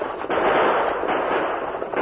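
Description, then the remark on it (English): A volley of gunshots as four men on a speeding, bouncing stagecoach fire at oncoming riders, a few sharp cracks popping out of a dense, steady roar of noise that runs unbroken for about two seconds, with no voices. “the stagecoach bounced and swayed over the rough trail, spoiling their aim as the four men fired at the oncoming riders.”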